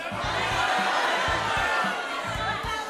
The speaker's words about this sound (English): So on the count of three, here's what we're going to do. I want everyone to yell out exactly how much money you're donating, okay? One, two, three.